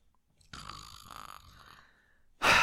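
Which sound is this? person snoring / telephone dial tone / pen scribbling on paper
person snoring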